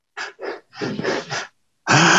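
Airy breathing: two short quick draws of air, then a longer drawn-out inhalation in several swells, ending in a loud, full rush of breath as the lungs fill completely. No talking.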